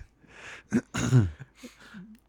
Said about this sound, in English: You need to clear your throat. Your like voice dropped like an octave and a half.